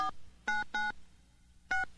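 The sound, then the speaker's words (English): A series of telephone keypad dialing tones: about five short, clear dual-pitched beeps pressed in an uneven rhythm, fairly loud, with quiet background hum between them and no talking. A radio host is dialing a caller's brother in the hospital, and the line is busy. “Call his brother Vince in the hospital. Oh, it's busy.”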